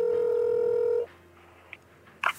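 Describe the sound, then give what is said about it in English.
A reporter dials a telephone to call someone: a steady, loud dial tone hums for about a second, then cuts off to a quiet line with a soft click and a short, bright tone at the end. “He picked up the phone.”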